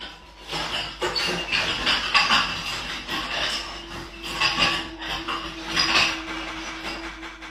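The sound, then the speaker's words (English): Repeated knocking on a door in the middle of the night, a dense run of sharp, irregular thuds and clatters that swell in bursts over a steady low hum, with no voices. “Hence the knocking noise you'll hear now.”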